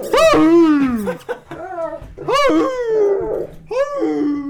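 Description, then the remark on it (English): A dog howls and whines in a few loud, drawn-out cries that rise and fall in pitch, separated by short pauses. “Yeah, just scream like Major.”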